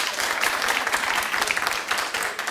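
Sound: audience clapping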